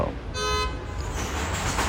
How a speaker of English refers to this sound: There's a jam, right? Traffic jam right in front of me, so there will be a lot of honking, and people do honk a lot where I live.